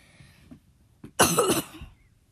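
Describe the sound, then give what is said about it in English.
A harsh cough bursts out loudly, a rough throaty hack lasting under a second, preceded by a faint breath and trailing off into quiet. “Okay, excuse me for a sec. I got to cough.”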